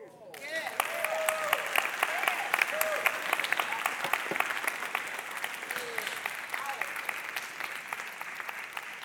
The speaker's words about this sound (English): I appreciate that y'all clap, even when I say some sad stuff. Thank you.